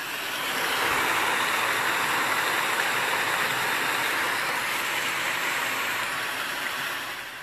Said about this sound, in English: Now you see why I'm listening to the rain. Just listening to it, y'all. Just listening to it.